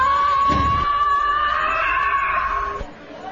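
A loud, sustained scream-like cry holds a steady high pitch for nearly three seconds, with a brief low thump near the start, then cuts off abruptly.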